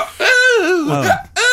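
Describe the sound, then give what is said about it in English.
A voice imitates hiccups: loud, high-pitched yelping vocal bursts that slide up and down in pitch, three in quick succession with a brief gap before the last. “I'll say this with my hiccups.”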